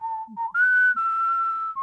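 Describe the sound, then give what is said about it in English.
A whistle blows one long, shrill, steady tone lasting almost two seconds, jumping to a higher pitch partway through. It is loud, with no talking. “So I'll be back after the whistle.”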